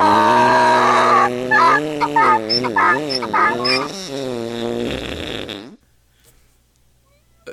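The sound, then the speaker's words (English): A donkey brays loudly for about five seconds, a harsh, wavering call that rises and falls in pitch in repeated strained pulses, then cuts off abruptly into near silence. “who is this donkey who is constantly farting and braying.”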